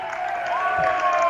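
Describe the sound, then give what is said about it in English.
Boone Central fans at a basketball game against Kearney Catholic give a stretch of mocking applause, a steady wash of clapping mixed with crowd noise that holds at an even level for the whole moment. “A bit of mocking applause here from the Boone Central fans that I have thought that about six turnovers have not been called on Kearney Catholic.”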